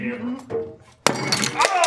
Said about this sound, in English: Oh, hey. It broke. Oh, it hit me in the neck. Yep. Oh my god. The skull did break. It in fact shattered.